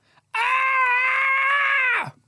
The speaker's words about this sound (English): No, it wasn't. Did that do anything? That was just you screaming.